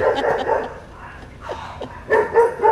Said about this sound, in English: It's great. Podcast punctuated by, fighting dogs.